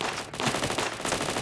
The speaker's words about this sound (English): Ben rushed the approaching car, finger pressed down hard on the trigger of his Tommy gun, screaming like a madman. He took down two of the gunmen, including the driver.